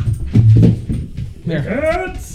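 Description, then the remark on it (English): A dog, Hunter, whimpers in a few rising and falling whines, following a stretch of low, muffled voice-like sound; there may be faint panting mixed in. “Sorry, your dog was being a shithead to me.”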